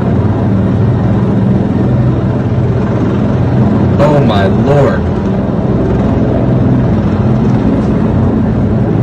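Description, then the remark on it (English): A U.S. Park Police helicopter lands on the east front of the Capitol, its rotor and engine noise loud, steady and droning throughout, while a man briefly exclaims over it partway through. “This is a helicopter literally landing on the east front of the Capitol.”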